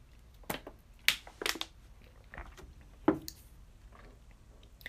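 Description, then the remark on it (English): Quiet mouth noises of someone sipping water: a few soft wet slurps and swallows with little clicks, spaced irregularly over a few seconds with no talking. “Well, I take a little sip of water.”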